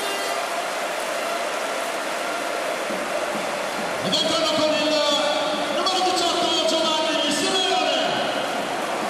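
A stadium crowd at a Napoli match applauds as Victor Osimhen is substituted off for Giovanni Simeone, a dense, steady wash of clapping that swells louder about halfway through, as cheering and whistling rise over it before slowly settling.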